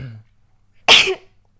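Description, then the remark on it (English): A single sharp sneeze bursts out loud after a brief trailing bit of voice, then everything falls quiet. “And bless you.”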